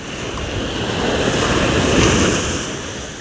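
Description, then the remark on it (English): Ocean waves wash in a steady, broad roar that swells and recedes, the surf building to a peak near the middle before easing off, with some wind noise and no voices. “is an ocean wave breathing guided meditation.”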